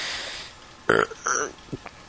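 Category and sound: human body sound, burp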